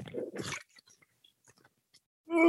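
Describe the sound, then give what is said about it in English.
Dirty bong water bubbling during a hit in a short, wet gurgling burst, trailing off into a few scattered pops and drips before a voice starts at the very end. “That bong water is dirty, son.”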